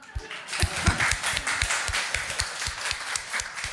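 An audience claps together in a dense, steady patter of many hands, holding at a fairly even moderate loudness for a few seconds with no voices over it.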